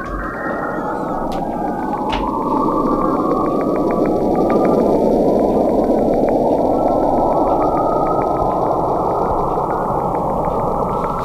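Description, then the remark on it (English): An eerie, sci-fi-like space recording of radio wave emissions from a planet and its moon: a dense, hissing electronic roar with slowly sweeping, warbling tones and a faint rapid ticking pulse, steady and loud throughout with no voices. “That sounds like a special sound effect from 1970s Doctor Who.”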